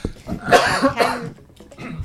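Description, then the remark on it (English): A person coughs a couple of times, short harsh bursts in quick succession, then the sound trails off into quiet. “I'm going to cough.”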